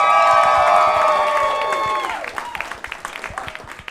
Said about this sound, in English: And, yes, yes. Applause it up.